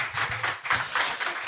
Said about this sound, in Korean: 네, 박수 부탁드립니다.